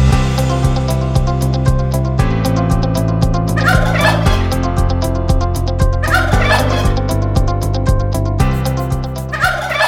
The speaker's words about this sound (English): Gobble, gobble.